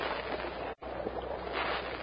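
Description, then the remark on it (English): A boat shoots out of a roaring cavern onto a swift-flowing river in a narrow gorge between tall cliffs, a steady roar of churning water broken by one brief silent gap early on, with no voices. “As the boat shoots out of the roaring cavern, its occupants gaze around in wonder.”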